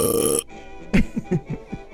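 A short hiss of noise gives way to a quick run of five or six sharp hiccups, each a brief gulping vocal burst, with no one talking.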